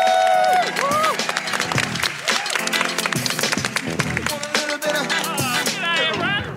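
Loud, sustained applause from an audience, with dense clapping running throughout and rising, wavering whoops and cheers cutting through the whole time.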